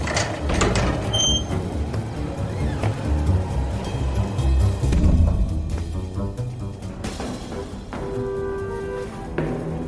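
A sliding door rumbles open with a steady, fairly loud mechanical grind and a few brief metallic squeaks, like a heavy train-car door, with no voices.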